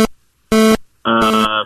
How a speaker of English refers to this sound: Oh, way late. You got beat by the buzzer. Sorry. Late.